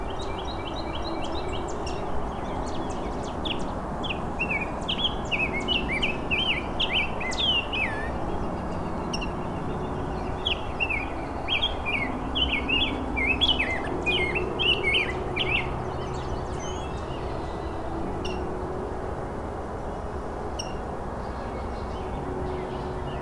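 A rose-breasted grosbeak sings rich, warbled phrases of bright whistled notes in two main bursts, over a steady low rumble of background noise, then the song fades out toward the end.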